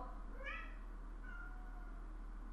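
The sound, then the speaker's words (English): A cat named Ruby meows loudly and insistently while sitting outside a door, one drawn-out meow followed by a briefer, softer cry, slightly muffled through the door, over a low steady hum. “She's sitting outside the door here meowing loudly at me.”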